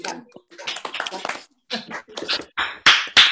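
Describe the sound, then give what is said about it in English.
Scattered, uneven clapping from a group joining in over unmuted microphones at the end of an online First Women Live session, mixed with overlapping cheerful voices, ending in a few loud, sharp bursts of applause. “Yeah, so if you want, everybody want to unmute, we can have a little clap.”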